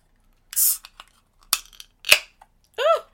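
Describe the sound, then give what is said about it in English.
A 32-ounce crowler can of Talisman Brewing Witch's Brew beer (5% ABV) is cracked open: a short fizzing hiss, then two sharp metallic clicks from the tab, followed by a brief spoken word at the end. “This is a crowler. This is in a 32-ounce can. Yeah. I'm going to pop this top.”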